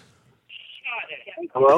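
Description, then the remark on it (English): A short, bright electronic tone, like an incoming phone call signal, followed by warbling, buzzy phone-line sounds and a burst of voice, all fairly loud. “We have a phone call.”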